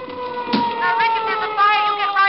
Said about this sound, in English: what's that siren? Is there a fire? Could be. Sounds like it's pulling right up here in front of my building.